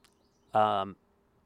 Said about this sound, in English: Wow, there's a certain kind of bird going insane behind me.